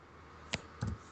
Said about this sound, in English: You have a loud keyboard, dude. Sorry. Nah, he attacks the keyboard vigorously because he's so angry about this series.